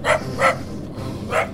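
A dog barks three times, two quick barks close together, then a short pause before a third. The barks are fairly loud and close, with no talking around them.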